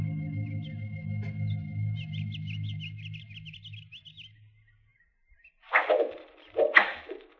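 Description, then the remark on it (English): Two sharp, airy whooshes of arrows shot by Indians cut through the air in quick succession, each fairly loud, after a stretch of low rumbling hum with high chirping tones above it. “Arrows. They're shooting arrows.”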